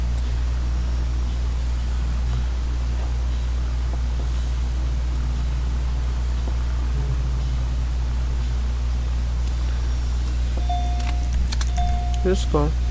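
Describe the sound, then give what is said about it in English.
A steady low rumble of a car interior runs throughout, and near the end a car seatbelt warning chime sounds, a few short repeated electronic tones at a mid pitch. “Oh, that's the seatbelt.”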